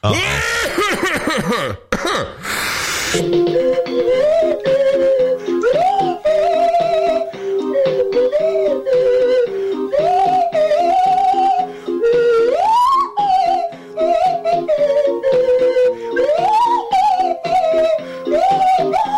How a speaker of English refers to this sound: I don't know how you play the bongos and play that the slide whistle with at the same time.